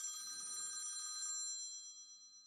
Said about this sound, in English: Hello? We're getting a phone call. I wonder who this is.